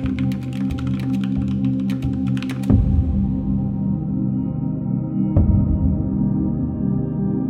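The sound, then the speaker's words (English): Quick, irregular keyboard typing clicks for a few seconds over a steady low hum as someone types with just a machine hand, then the typing stops, leaving the droning background and a couple of dull thumps. “Eventually, I adjusted to typing with just the machine hand.”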